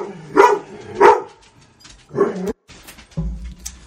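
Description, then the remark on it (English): A dog barks, two sharp, loud barks in quick succession, then a third after a short pause, followed by a lower, softer rumble. No one speaks. “So now the dog's done barking.”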